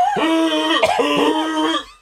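A person imitates a woman's hoarse, barking cough from a sore throat, a few loud, honking voiced bursts run together over about two seconds, like an old beagle's croupy cough or a wounded seal, then trailing off.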